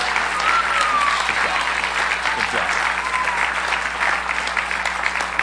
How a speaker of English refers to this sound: give them one last round of applause. We appreciate you guys.